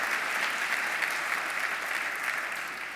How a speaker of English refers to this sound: Give Third Baptist and Temple Emmanuel another big round of applause for hanging together for 30 years in celebration of love.